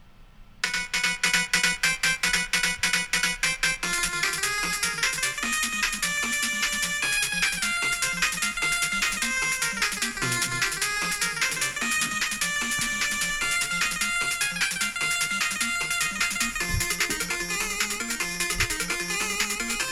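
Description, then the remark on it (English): Upbeat chiptune stage music from the Snake Man stage of a Mega Man video game plays loud and continuous, with bright square-wave melodies over a driving, bouncy bassline and snappy electronic percussion, starting after a brief moment of quiet. “That was a Snake Man stage.”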